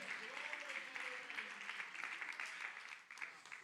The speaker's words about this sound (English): Come on, if you believe that, clap your hands and shout. Clap your hands and worship. Clap your hands and magnify the Lord with me.